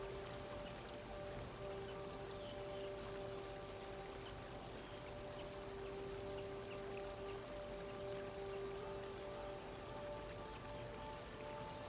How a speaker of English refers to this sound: Their gentle sound blends with the sound of the rapids.